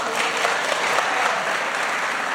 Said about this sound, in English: And I remember I was sitting in the House chamber when he gave that speech, and we all started clapping.